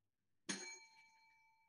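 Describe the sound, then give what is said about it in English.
A small bell is struck once to start a final round, a bright clear ding that rings on with a shimmering, slowly fading tone. Fairly loud, with no voices. “I'm going to ring this bell and let's go at it.”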